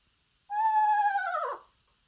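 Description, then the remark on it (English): An eastern screech owl gives a single eerie whinny, a clear, wavering, slightly quavering whistle about a second long that drops sharply in pitch at the end, heard alone against silence. “To accentuate the story, I played the eerie whinny of an eastern screech owl to a full room of UFO enthusiasts.”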